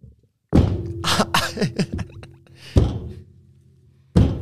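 Three loud, sharp one-handed slaps, made by several people together, against a hard surface, one at the start, one midway and one at the end, each followed by a lingering low ring and some fainter rattling in between.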